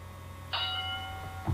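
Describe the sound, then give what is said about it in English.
A boxing bell gives a single bright metallic strike, its ringing tone fading out over about a second above a steady low hum, with no one talking. “So, with that being said, let's ring the bell and let's lace him up.”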